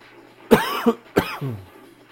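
Two harsh coughs in quick succession from a person with seasonal allergies, the first with a short follow-up burst, the second trailing off into a low throaty rasp. Loud, with no talking.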